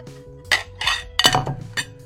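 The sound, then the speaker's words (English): Dishes of food clatter and clink as they are set down one after another in a kitchen, several bright knocks of crockery in quick succession with faint ringing tones and no voices. “So I have with me, hold on, an assortment of dishes of food.”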